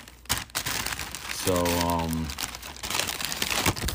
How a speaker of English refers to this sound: I just gotta take a taste. So 10 inches of delicious hot buttered cheesesteak. Hope you don't mind me chewing. I have not ate all day long. I'm starving.